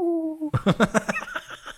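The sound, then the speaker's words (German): A human voice gives a short, steady hoot imitating an eagle-owl, held for about half a second, then breaks into a quick run of rhythmic laughter. “Das klingt wie ein Uhu.”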